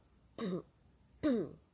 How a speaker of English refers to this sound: Sorry, I thought in my mind, what if I said also just last thing and just coughed and that was it? But no, I am actually gonna say something. But I laughed because I actually felt like the need to cough when I was thinking that.